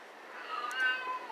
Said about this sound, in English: In the background, that's my old kitty. She's 18 years old. She's deaf. She runs around like a kitten, but she does yell a lot. If you can hear her, she's doing this, ow, row, ow, row. She's expecting a response from me, not that she can hear it.